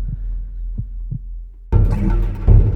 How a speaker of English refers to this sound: Hearts beat themselves.